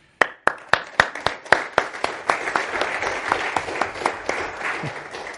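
An audience bursts into applause, starting with a few sharp, evenly timed claps that quickly thicken into a steady, dense patter of many hands, with no voices.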